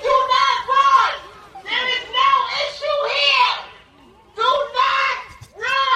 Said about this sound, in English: Yeah, the whole crowd starts shifting and running. Yeah. Run, sheep. Listen to it.